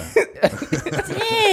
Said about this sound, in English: Damn. Sorry, I sneezed. You got some on your neck.